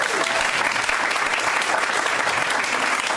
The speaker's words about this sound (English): Round of applause for the volunteers.